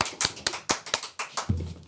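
Brief, sparse applause: about eight sharp, crisp claps at a quick, fairly steady pace, moderately loud, with a low droning tone joining toward the end and no voices.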